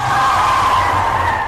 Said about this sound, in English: After a few minutes driving from HQ, something white and floating appears. Jimmy hits the brakes.